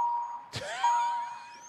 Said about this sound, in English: Your beeping is killing me.